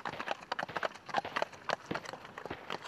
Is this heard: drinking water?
no